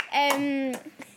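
A single person claps a few times, sharp, while a young voice lets out a long sustained tone over the first claps.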